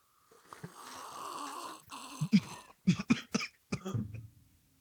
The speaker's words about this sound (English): Well, this dark and stormy is very delicious. Why don't we take a slurp?